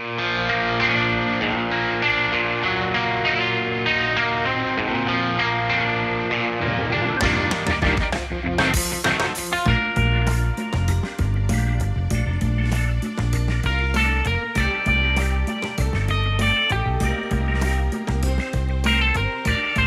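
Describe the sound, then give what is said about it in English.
Background music of the video game town Turffield plays steadily with no voices, a layered melody over sustained chords that opens muffled and then swells into a fuller, brighter arrangement with a prominent bass line. “If you head left from the breeder, you go into what town? I guess that's Turffield. And this is what Turffield sounds like.”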